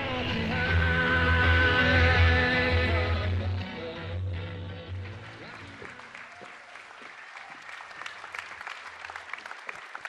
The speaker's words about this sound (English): Thank you for that smattering of applause. We really appreciate it.